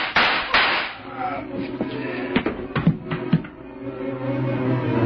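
Gunshots ring out: two hard bangs at the start, then a ragged cluster of sharper cracks in the middle, all over a steady low rumbling background with faint murmuring.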